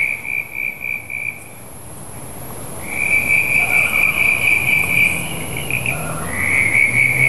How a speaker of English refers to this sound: We're listening to the calls of several brown tree frogs, Latoria ewingi, which are very beautiful whistling noises. Plus, I think there's a sneaky little chirp in there of a common eastern froglet, Crinia signifera.